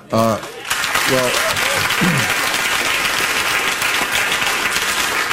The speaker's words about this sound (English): See, the crowd cheered for that.